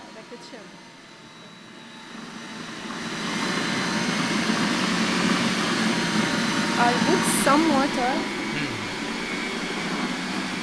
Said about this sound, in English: poured the chickpeas into the food processor and blended it with some tahina or sesame paste, some water, as well as a few ice cubes to keep the hummus from overheating.